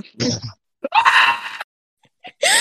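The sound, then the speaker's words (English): A person imitates the shrill, high-pitched scream from the spider scene in the movie Home Alone, in a few loud vocal bursts, with one sustained wailing cry in the middle and short yelps around it. “Just this high-pitched scream.”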